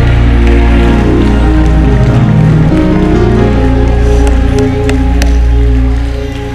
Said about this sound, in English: And clap your hands to him and open up your mouth and give him a shout in the name of Jesus.